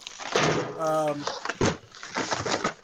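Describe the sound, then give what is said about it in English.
A chair being shifted and swapped in the speaker's own studio: thumps and scraping bumps, plus a brief high squeal as it slides, with muffled talking mixed in. “Yeah, it was really bad. I was changing my chair.”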